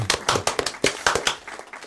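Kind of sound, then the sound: crowd, audience clapping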